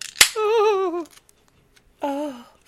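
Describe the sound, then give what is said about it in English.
A single sharp crack of a beer can's pop-top snapping open, followed by a long wavering vocal sigh and a second, shorter pleased exclamation. “Here, let me pop my top.”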